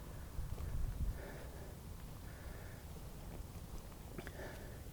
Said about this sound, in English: You can probably hear Yoro there in the grass. His little doggy trotters.